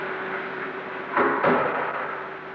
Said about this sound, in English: This was followed by the sound of a door shutting, but once again, a door which doesn't exist.